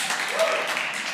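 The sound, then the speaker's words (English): An audience at Risen Church claps together in a steady, dense burst of applause, bright and fairly loud, holding an even level throughout the short moment with no pause. “If you're new, you're like, why are they clapping?”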